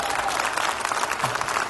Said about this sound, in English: And again, clapping, thank you. I got the cheerleader section going here in this service.